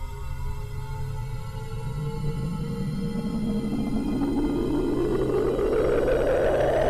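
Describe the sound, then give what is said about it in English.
A deep, roaring wind builds steadily over several seconds, its rushing hiss climbing in pitch and swelling as if sweeping closer, over a constant low rumble with no voices. “It's eerily silent for a long time, and then you hear a roaring wind rushing towards you.”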